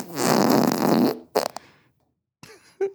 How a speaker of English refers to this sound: All right, here's fart number three.